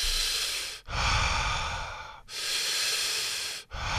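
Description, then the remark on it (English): Steady conscious connected circular breathing with no pauses, each deep inhale flowing straight into a full exhale in a continuous loop of roughly three even cycles. No one speaks. “So there's no stopping in my breath. That's a circular breath.”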